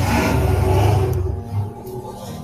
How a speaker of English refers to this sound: excuse me, I'm, you know, my neighbors wanna ride motorcycles around my house.